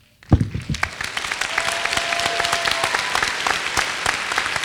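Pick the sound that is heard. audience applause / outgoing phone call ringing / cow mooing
audience applause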